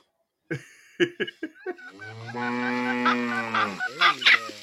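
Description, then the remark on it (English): A farm animal sound effect played from an app: a quick run of sharp, squawking fowl calls, then a long, drawn-out lowing moo with a few more honks at the end. Loud, with no talking. “You got any what kind of animals do you have on your farm? You got chickens, you got pigs, you got it all?”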